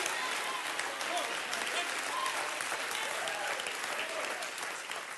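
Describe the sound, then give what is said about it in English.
A crowd claps its hands in steady, dense applause that continues evenly throughout, a broad wash of overlapping claps with faint voices mixed underneath. “You got to get in the flow and clap your hands and rejoice with him.”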